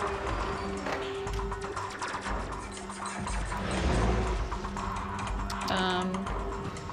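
dice being rolled

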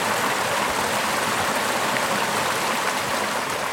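water flowing

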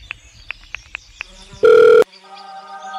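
phone call ringing

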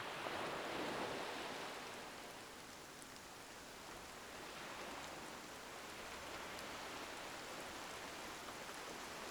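rain falling

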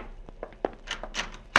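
gunshot

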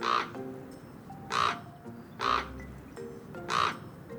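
common raven calling

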